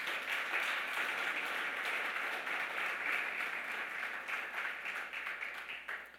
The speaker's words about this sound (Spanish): ¿Se animan a levantar otro aplauso de alabanza al Señor o no?